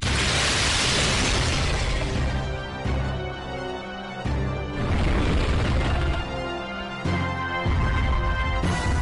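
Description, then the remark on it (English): Heavy booming thuds land at intervals of a couple of seconds, deep and loud, like giant dinosaur footsteps: a T-Rex coming in through a window in a Capcom video game, over a dense, dramatic game soundtrack with crashing, explosive bursts. “You kind of hear the thumping, right?”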